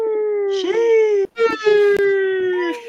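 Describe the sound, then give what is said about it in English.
A voice imitating a high, drawn-out howling "sheesh," sustained and strained with a wavering tone, broken by a short gap and then held again until the end. “It's like a sheesh howling kind of thing is happening over here.”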